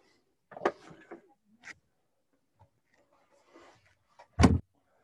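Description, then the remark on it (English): Several hard knocks on a door, spaced irregularly, building to one loud, heavy bang near the end, with quiet pauses between the hits and no voices. “Okay, I'm going to knock it really hard, so look out.”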